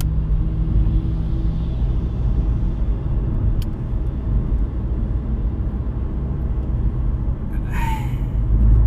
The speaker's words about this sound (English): I am sitting in the most classic of LA traffic ever. Oh my god. Will I ever get home is the question.